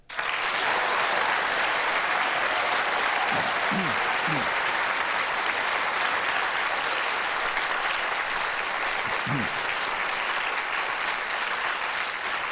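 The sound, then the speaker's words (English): Sustained audience applause at a presidential debate after the introduction of candidate Matt Santos, a dense steady roar of many hands clapping at constant loudness, with a few faint voices briefly rising underneath. “Ladies and gentlemen, that's enough clapping.”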